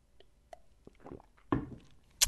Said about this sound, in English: I'll wait for the answers as I take a sip here.